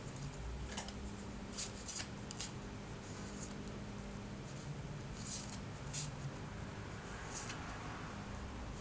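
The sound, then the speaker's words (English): A deck of tarot cards being shuffled and cut, with soft papery flicks and snaps at irregular intervals over a low, steady background hum. No one speaks. “So I'm gonna shuffle and cut the deck.”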